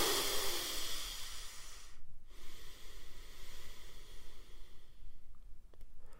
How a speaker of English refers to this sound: And I know I shouldn't do this in a podcast, but you can hear me breathing anyways. But here it goes.